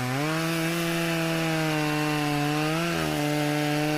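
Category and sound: tool, chainsaw revving sound effect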